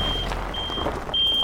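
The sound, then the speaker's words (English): A truck's reversing alarm beeps in steady high-pitched tones, three pulses over a low rumble of idling engines and outdoor traffic noise, as vehicles arrive at a mass grave on the outskirts of a city. “A steady stream of corpses keeps arriving in ambulances, trucks, and even private cars.”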